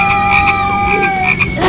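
Frogs croak in a loud, steady rhythmic chorus of repeated pulses, layered over a constant droning tone, with no voices present.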